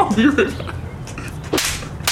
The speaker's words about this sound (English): slapping some lady.